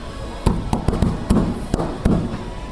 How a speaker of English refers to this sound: Drum the top of the fridge with your hands if you can.